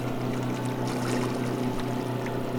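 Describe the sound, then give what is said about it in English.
A water taxi motoring across water on the trip to Toba Inlet, a remote fjord in British Columbia, Canada: a steady engine drone with a low humming tone, overlaid by continuous hissing and splashing from the hull moving through the water. No one speaks. “It is geographically closer to Campbell River, though the trip is an hour and 45 minutes by water taxi.”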